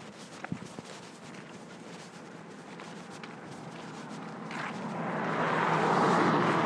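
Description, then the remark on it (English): A car passes loudly. A low steady rumble with a few faint clicks early on swells into a broad, rushing roar that grows louder over the final two seconds. “Was that me or was that just a loud car? I think it was just a loud car.”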